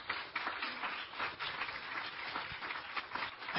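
Steady applause from an Investor Day audience for the guests, a dense crackle of many hands clapping at once that holds at an even level for several seconds, with no one talking over it.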